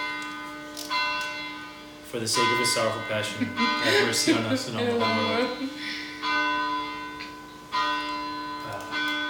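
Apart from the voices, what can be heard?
church bells ringing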